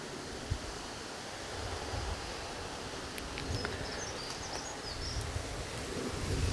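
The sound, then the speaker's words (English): Steady, hissing wind sweeps through trees, a broad rushing noise with soft rustling and low gusty rumbles that swell slightly toward the end. A few faint high chirps flicker in the background. “Whilst I was tidying up, and you can probably hear the wind whistling through the trees now,”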